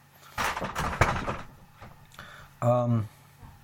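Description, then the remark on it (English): A door being shut: about a second of scraping, thudding movement, followed shortly by a brief, strongly pitched creak or voice-like tone, with quiet background noise in between. “Rog, can you shut the door?”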